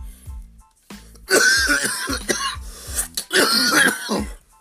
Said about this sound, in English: Edit all my coughing out. Is that possible? I need a drink.